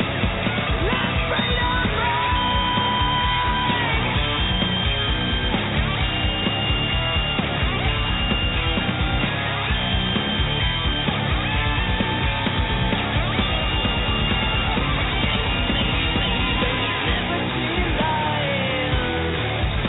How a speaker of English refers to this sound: Now, they've got another song here that we're just queuing up, and this sounds like a battle anthem.